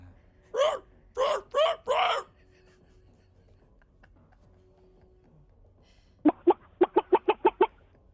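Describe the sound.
A person imitates a chicken during an animal-noises game: four drawn-out, squawking bawks, a pause, then a quick staccato run of about eight short clucks.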